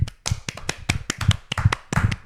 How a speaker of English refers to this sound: Only two people are clapping.